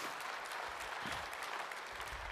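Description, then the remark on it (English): A crowd applauds steadily as a group of people go to take their seats, a dense, continuous patter of many hands clapping at an even loudness throughout, with no voices standing out. “Give these guys a round of applause as they go ahead and have a seat.”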